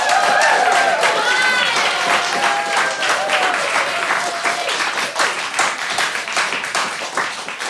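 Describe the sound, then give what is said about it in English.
An audience applauds steadily for several seconds for the teams at the end of the Nerd Quotient quiz round, dense rapid clapping with a few whoops and cheers rising over it early on, sustained at a fairly loud, even level throughout. “Give our teams a round of applause.”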